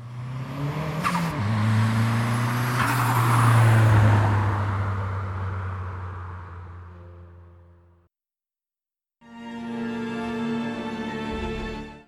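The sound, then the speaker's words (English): The Batmobile's engine revs loudly as Batman, with Batgirl in the passenger seat, drives off into the night. Its roar swells and then fades out. After a brief silence, a steady engine rumble starts up again. “He lays her in the passenger seat and drives off into the night.”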